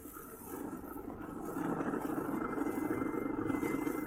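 A car engine rumbles with steady road noise, growing louder partway through as the car drives up, with no voices.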